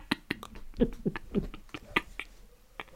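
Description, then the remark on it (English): A pet dog lets out a quick run of short, sharp barks in an uneven rhythm, fairly quiet and somewhat muffled, with a few clicky noises around them. “Oh good, my dog started barking.”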